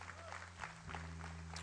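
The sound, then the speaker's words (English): A church audience claps their hands for the Lord in steady, dense applause, with a constant low hum running underneath and a faint murmur of voices. “Let's give the Lord a hand clap.”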